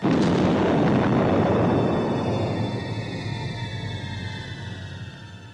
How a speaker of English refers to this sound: I mean, we barely talked through that trailer because it was awesome. Took my breath away. It's just all explosions. It's everything I want.